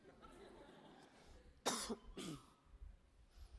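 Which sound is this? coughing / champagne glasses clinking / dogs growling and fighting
coughing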